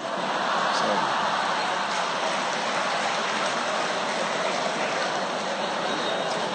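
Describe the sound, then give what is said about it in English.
An audience applauds a joke about a professor, in a dense, steady wash of clapping that holds at an even, fairly loud level for the full six or so seconds without fading. “You're not supposed to applaud, but sometimes professors do need to be put in their places.”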